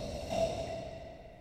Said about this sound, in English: Another huge snore, followed by a loud snort, sends shockwaves throughout the cave